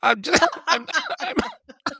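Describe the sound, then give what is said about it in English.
A man's loud bursts of laughter broken up by harsh coughs, several rapid convulsive fits in a row followed by a brief pause and one last sputter. “I'm laughing and coughing at the same time, because that is the biggest laugh I've had this week.”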